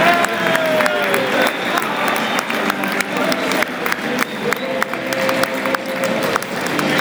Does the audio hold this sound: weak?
no